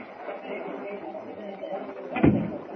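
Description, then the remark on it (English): A dressing room door opens with a short, solid clunk near the end, over a steady murmur of indistinct background voices. “Oh, this must be the dressing room door.”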